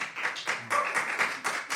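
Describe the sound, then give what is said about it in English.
A quiz audience claps steadily for a couple of seconds to vote for which team should get the points, many hands overlapping into a dense, continuous patter with small swells, moderately loud, no voices over it. “All right, so please applaud for who you think should get the points.”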